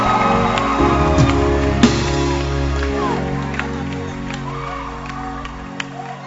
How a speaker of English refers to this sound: There's no band like this in Accra. At all church. With this collection. Clap your hands again.